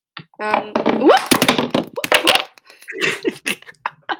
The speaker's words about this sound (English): What was that? I closed something on my desk and my Meg Funko Pop came tumbling down from Hercules and a rock. You know how her hair is giant? Yeah. Sure. Yeah, the Funko Pop is very unstable